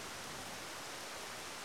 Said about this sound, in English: Rain begins to fall from the sky.